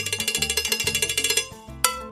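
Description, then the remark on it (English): A cowbell plays a quick, steady rhythm of sharp metallic clanks over a low bass line, then the pattern thins out and one last loud clank rings out near the end. No one speaks. “When he left for Nueva York, he took the bell with him and brought that rhythm to Queens.”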